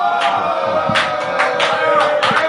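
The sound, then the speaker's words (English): An audience applauds during the reading of a testimony, a steady wash of many hands clapping at once with sharper bursts rising every half second or so, loud and continuous throughout. “You are clapping, but I don't even understand.”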